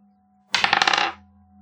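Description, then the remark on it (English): A handful of dice clatter across a hard tabletop in a quick, dense burst of rattling clicks lasting about half a second, fairly loud, then settling into quiet; many dice are rolled for an attack in a tabletop game. “That's a lot of dice.”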